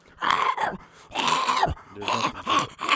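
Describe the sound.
A person imitates a French bulldog huffing and puffing: a run of breathy, groaning snorts in uneven bursts, fairly loud, with no speech.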